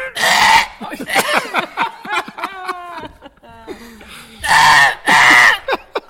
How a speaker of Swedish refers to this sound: Koalan kan låta som en riktigt arg gris. Ja, det är man kommer alltid tillbaka till grisen.